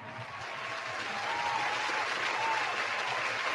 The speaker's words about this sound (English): Shout out to Brock, man. Round of applause.